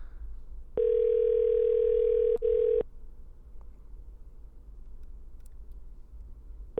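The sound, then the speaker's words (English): A single two-second burst of a phone's ringback tone, a steady electronic purr heard through the earpiece, followed by several seconds of quiet line hiss while the call goes unanswered. “Can you hear the ringing?”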